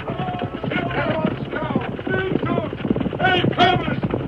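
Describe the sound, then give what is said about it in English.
A horse's hooves clip-clop in a quick, steady rhythm, fairly loud throughout, with voices calling out over the hoofbeats. “Whoa, up there, you horse!”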